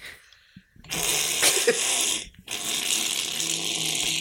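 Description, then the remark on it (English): A person imitates a vampire's hiss, two long, breathy hisses, the second following a brief pause, with no talking. “All right, now, guys, do your best vampire hiss.”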